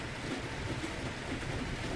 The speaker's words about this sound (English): Rain beats against the balcony overhead, and faint thunder rolls in the distance.